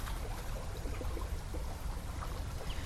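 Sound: river water flowing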